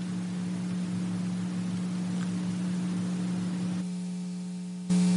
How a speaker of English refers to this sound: Can you hear the hum of the air conditioning? There's something up there. I don't know if it's the lights or whatever.